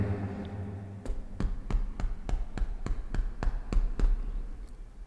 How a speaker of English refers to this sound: Knock on his door. Nothing. I knock again.